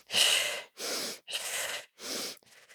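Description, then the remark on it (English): Rapid, forceful cyclical breath work being demonstrated in a steady cycle: four strong, noisy breaths in quick succession, each about half a second, followed by a softer trailing exhale. “And I'm just going to do it for all of you so that you can get a little sense of the breath work.”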